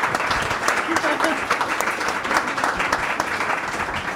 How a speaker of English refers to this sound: Can we please have a round of applause for our wonderful panelists?